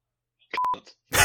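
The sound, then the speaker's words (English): A quiz game buzzer in a football quiz about players' clubs goes off with a single short electronic beep, a steady mid-pitched tone lasting a fraction of a second, followed moments later by a loud, noisy burst. “Is that your buzzer? Go on. Oh. That's my buzzer.”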